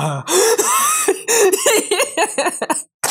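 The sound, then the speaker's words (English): A voice imitates the tail end of a yawn: loud, breathy vocal bursts with wavering, stretched pitch, broken into several short strained pieces before a brief silence. “It's like the yawn orgasm. Like the end of the yawn where it's like the”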